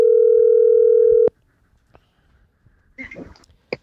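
A loud, steady telephone dial tone of an outgoing call being dialled hums for just over a second, then cuts off abruptly, leaving quiet handling noises and a brief burst of muffled voice-like sound.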